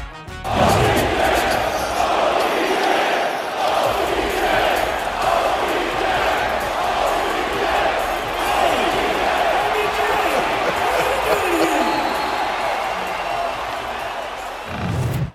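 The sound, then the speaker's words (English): The crowd at a Dallas Mavericks basketball game in Dallas cheers Odell Beckham Jr., attending with Micah Parsons and Trayvon Diggs, loudly and steadily for about fifteen seconds, a dense roar of many voices with shouts, whistles and occasional ball bounces or slams cutting through. “He went over there with Micah Parsons and Trayvon Diggs, and the Dallas crowd was excited, to say the least.”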